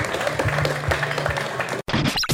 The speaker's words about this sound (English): Let's give them a round of applause one more time, everybody. Appreciate it.